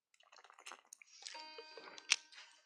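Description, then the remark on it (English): Faint, wet gurgling with irregular bubbly pops and squishy liquid sounds, then a sharper splash-like burst near the end. No one speaks. “Sorry if you could hear that gurgling.”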